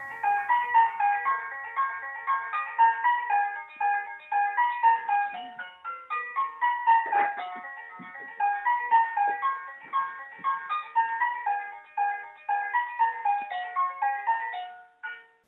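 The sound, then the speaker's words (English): A musical doorbell plays a long, bright electronic tune, steady rhythmic notes repeating a chiming melody for about fifteen seconds with no talking over it. “She's going to ring the doorbell. We want to hear the doorbell, what it sounds like.”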